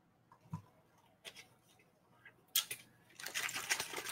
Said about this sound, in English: That's ice water right there. Because I'm feeling I'm going to need that for the whole duration.